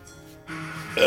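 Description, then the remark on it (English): A loud, low burp after drinking a lot of soda water, with a rough, croaky tone that swells in volume and ends in a stronger burst, with no talking over it. “Got a little gassy there. I drank a lot of soda water today.”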